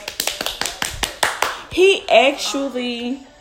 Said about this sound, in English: Oh! And golf claps.